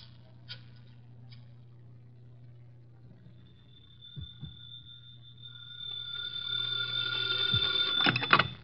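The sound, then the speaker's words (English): A few faint clicks over a low hum, then a telephone ringing with a shrill, buzzing tone that swells from faint to loud and rings steadily. No one speaks. “I got to make a phone call. There's a booth.”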